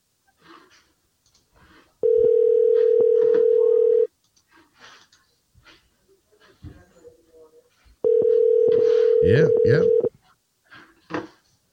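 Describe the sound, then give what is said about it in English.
A telephone ringback tone of an outgoing call sounds twice, each a steady two-second buzz separated by a long pause, loud, with people talking quietly in between and over the second ring. “Let's see if we can get him on the phone.”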